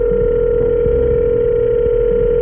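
An incoming telephone call from an unregistered number rings with a steady, unbroken electronic tone that holds loud and level for the whole stretch, sounding thin and band-limited like it's coming through a phone line, with no one talking.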